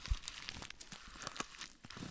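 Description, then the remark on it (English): Paper being crumpled in a steady run of crackly, crinkling bursts, bright and papery, with sharp snaps scattered throughout and no voices. “This is us crumpling up the episode.”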